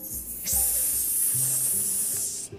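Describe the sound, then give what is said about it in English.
A voice imitates a snake with one long, loud hiss held for about two seconds, sharp and breathy, then cutting off abruptly. “"I'm in it," the bone growled, and it began to hiss like a snake.”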